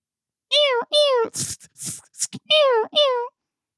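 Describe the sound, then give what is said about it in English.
A person imitates a screeching cat: two strained, wavering yowls, a run of harsh raspy hisses, then two more drawn-out yowls, loud and alone. “That sounds like a cat getting skinned.”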